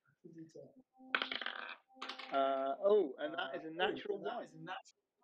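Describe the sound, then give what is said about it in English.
Dice clatter and click against a tabletop in a brief rattling burst during a tabletop role-playing game, heard under voices and laughter. “That is a natural one.”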